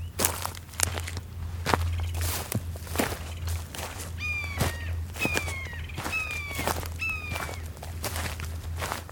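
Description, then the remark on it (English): Steady footsteps crunch along a trail at an even walking pace as someone hikes, while a few high, descending bird cries ring out partway through over a low background hum. “H is for hiking.”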